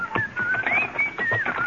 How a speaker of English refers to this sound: whistled cheerfully as we loaded the wagon, then made our way back to the sheriff's office.